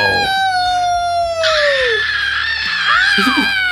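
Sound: people screaming loudly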